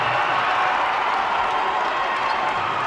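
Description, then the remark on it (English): A large basketball arena crowd roars and cheers in a steady, loud wall of noise with scattered clapping, during a timeout after a made three-pointer as walk-on substitutes come into the game, sustained throughout without any clear voices standing out. “Lee Company three, and a timeout for celebration, a timeout for substitution, and the crowd roars as Isaiah Leitze and Jack Jubenville come in.”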